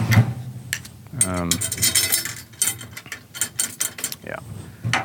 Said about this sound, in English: So I'll do the same thing with the drill, just getting the tension rods to meet the counter hoop here. Not actually applying any tension to the head with the drill. Just doing some of the labor, the prep work.